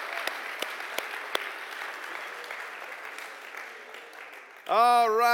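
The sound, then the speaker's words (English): A church audience applauds itself with steady, dense clapping for about four and a half seconds, a few sharper claps standing out, before a single voice begins speaking loudly at the end. “So I want you to be French for 10 seconds with me and clap for you guys for your generosity and support.”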